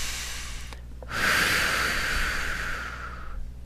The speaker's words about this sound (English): Big exhale, releasing any rigidity or a sort of inflexibility that may feel like an obstacle for us feeling this and knowing this and further identifying with this sense of our sovereignty. Big release.